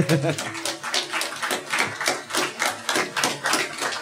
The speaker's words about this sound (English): They can sure clap for three people. It's amazing. We'll fix it. They're very loud.